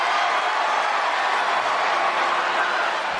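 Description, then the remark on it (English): A large Monday Night Raw wrestling arena crowd, reacting to a reference to Liv Morgan, roars in a steady, loud wall of noise, with mixed cheering and clapping sustained throughout and no single voice standing out. “Well, you'll hear the reaction from the Monday Night Raw crowd.”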